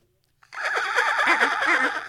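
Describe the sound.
A person imitates a dolphin with a loud, high-pitched warbling chatter that wavers rapidly up and down for about a second and a half after a brief silence.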